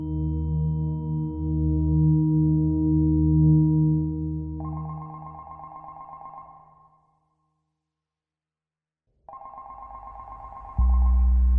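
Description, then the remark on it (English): A telephone rings at an embassy in Washington, D.C., in two trilling bursts separated by a short silence, the first emerging from a low sustained droning tone and the second joined by a deep hum near the end. “Back in D.C., a phone rang at the embassy.”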